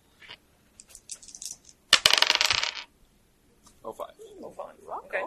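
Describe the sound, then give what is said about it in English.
Dice clatter across a table for a sneak roll during a game, a bright, rapid burst of clicks lasting under a second, with quiet voices speaking before and after the roll. “Okay, sneak roll.”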